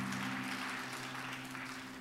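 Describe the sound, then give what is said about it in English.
An audience claps in praise to the Lord while being seated at an evening church service, a dense, steady patter of many hands, fairly soft overall, with a low sustained hum running underneath and no talking. “Give the Lord a good hand clap of praise as you're being seated this evening.”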